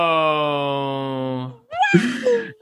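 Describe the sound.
A voice imitates the squealing of an Ewok when an AT-AT crashes, starting with a long, steady, nasal whine, then after a brief pause breaking into a loud burst of shrill, wavering squeals.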